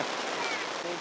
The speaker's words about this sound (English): It's raining hard.